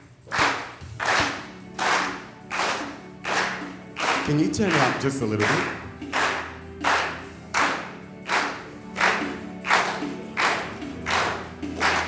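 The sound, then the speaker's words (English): A crowd claps along in time to music in a steady, even beat, loud, roughly two claps per second, helping the performing kids keep time, with a brief spoken question partway through. “So if you could help us by clapping.”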